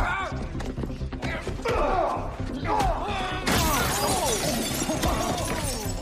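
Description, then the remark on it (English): A door being broken in, in a film clip: a loud crash of splintering and shattering bursts out midway, among heavy thuds, while people talk and shout over the commotion. “I know you're meth and all, but you can't just come in here and break the door.”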